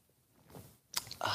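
Wet mouth sounds of sipping coffee: a quick slurping sip, then a louder, longer one trailing off at the end, with no talking.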